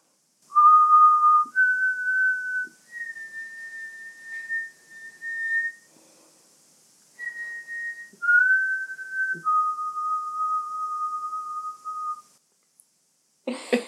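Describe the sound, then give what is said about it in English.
Slow, eerie human whistling imitates the legendary ghost's whistle said to carry on the wind late at night: a drawn-out melody of long sustained notes, rising and falling, with a brief pause midway. It is clear, with no talking. “It is said that late at night, his whistle is carried in the wind. And actually, supposedly, this is what it sounds like.”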